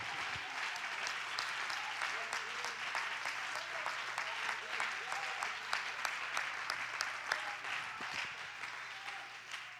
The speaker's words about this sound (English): Somebody clap your hands and let's magnify the Lord together.